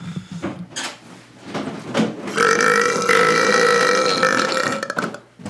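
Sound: loud burp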